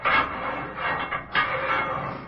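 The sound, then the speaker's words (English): A heavy metal jail cell door grinds and clanks open, a harsh rattling scrape with a sharp clunk partway through, fairly loud, with no voices. “Leave the cell door open, Constable.”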